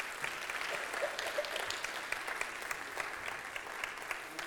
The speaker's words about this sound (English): If you helped out with VBS this week, I'm not going to ask you to stand, but if you would, just give the helpers a round of applause for all their hard work.